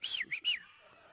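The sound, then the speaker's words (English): A person whistles in imitation of a cockatiel, three quick, bright chirping notes that rise and fall, fairly loud, then fade into a quiet background with no talking. “And I hear his cockatiel in the back.”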